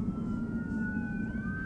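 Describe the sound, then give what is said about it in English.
An ambulance siren wails steadily over a low rumble of traffic, its tone sliding slightly in pitch as it moves, loud, with no voices. “Has an ambulance.”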